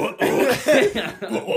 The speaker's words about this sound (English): Yeah, dude, each one of us has burped like three times.